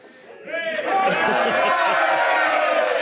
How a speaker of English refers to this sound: So will we get another cheer out of him, or have they cheered enough? Okay, well it is Roscommon against Galway. So listen, do you want to give your home team a little bit of support there? You can.